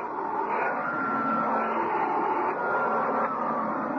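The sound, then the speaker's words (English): A Hoover vacuum cleaner whirs steadily for several seconds as it cleans cat lint off a carpet, its droning motor whine holding an even roar with slight shifts in pitch. No one speaks. “Just give me a minute to vacuum the cat lint off this carpet.”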